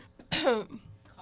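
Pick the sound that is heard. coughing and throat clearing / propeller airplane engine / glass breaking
coughing and throat clearing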